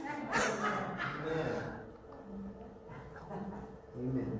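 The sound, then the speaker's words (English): Several voices together imitate a dog's bark, a loud "bow-wow" burst near the start followed by a murmur of crowd voices and scattered calls. “If Jesus calls us a dog, you know what our response is? Bow wow.”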